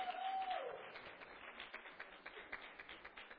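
A crowd applauds with dense, steady clapping, plus a brief whistle-like tone at the start; the applause stays fairly even and gradually thins toward the end.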